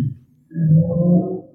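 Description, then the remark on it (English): A motorcycle engine wails past, a low droning, harmonic moan that is quiet at first, then swells loud after half a second and holds steady with no talking. “Somebody on a motorcycle. Yeah. It sounds like a wailing.”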